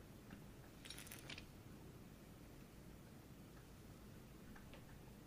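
Faint keyboard typing while entering a search on Amazon: a short flurry of clicky keystrokes early on, then a long pause and a couple more taps near the end, all over a steady low background hiss with no talking.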